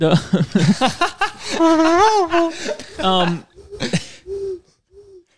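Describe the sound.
A person imitates a dove's cooing with a string of warbling, throaty voiced tones, ending with two short, softer coos after a brief pause.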